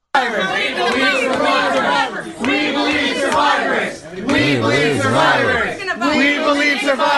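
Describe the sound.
A crowd in a restaurant in Washington, D.C., chants and jeers as it chases Ted Cruz out, with his wife Heidi there too. Many voices shout over one another in a loud, continuous din with rhythmic surges and brief dips before the chanting swells again.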